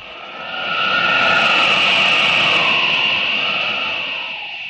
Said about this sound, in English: Ah, good. Still following the railway. Ought to be getting fairly close to Denver. Looks like a long trestle up ahead. I'd get aboard that train if it weren't so slow.